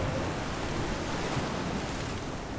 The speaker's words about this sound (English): Not only is it not allowed on board, but it would be impossible to keep one lit here on the pitching decks of the sailing ship Olympus, with the rain pounding across the deck and the spray from the broken waves washing the length of the ship.